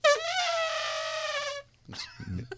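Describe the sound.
A person lets out a loud, high, sustained trumpeting call imitating an elephant, lasting about a second and a half, followed by a few brief breathy sounds.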